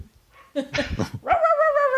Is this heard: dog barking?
yes